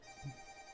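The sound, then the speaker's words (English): A mobile phone that had been silenced rings anyway with a steady electronic tone, fairly faint and heard only briefly, with a dull low thump partway through and no one talking. “You know what's really bad about this is I actually silenced my phone and it still didn't work.”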